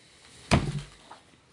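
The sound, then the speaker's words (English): A single heavy knock thuds against a door, solid, ringing briefly before a much fainter tap follows. No one speaks. “Knock, knock, knock.”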